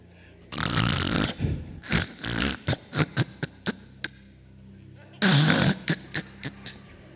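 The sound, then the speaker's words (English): A preacher imitates loud snoring: two long rasping, snorting inhales, each followed by a string of short sputtering puffs and lip flutters. “Child, he snore.”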